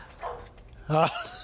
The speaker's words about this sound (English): Oh, wait, I hear a dog.